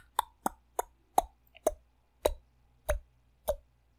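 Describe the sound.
Someone imitates deep, cricket-like clicking with their mouth: about eight hollow, fairly low clicks in an uneven rhythm, moderately loud over a faint low hum, with no talking.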